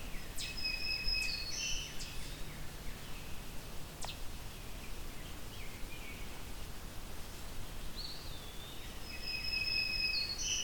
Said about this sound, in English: But this black-throated green warbler is a pleasant surprise, because we're in Norfolk County. About an hour and a bit drive from Hamilton.